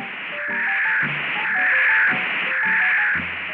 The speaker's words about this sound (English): Then the static came to a roar.